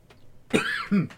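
A person coughs nearby, two harsh bursts in quick succession with a throaty, rasping quality, standing alone without any talking.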